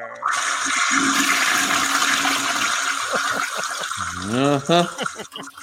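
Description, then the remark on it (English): A toilet flushes with a loud rushing of water that roars for about three seconds, then fades as a voice cuts in briefly near the end. “When you suck this bad, we got to flush you.”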